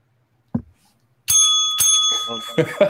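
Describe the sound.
A small bell, like a bicycle bell, rings bright and close several times in quick succession, its metallic tone lingering between strikes, with a voice briefly audible underneath.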